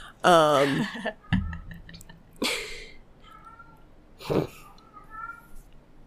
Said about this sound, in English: And my cat's yelling.